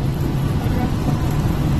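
A steady, continuous low rumble of a car cruising along a highway in rain and traffic, with engine and tire drone holding an even loudness throughout and no distinct passing sounds standing out.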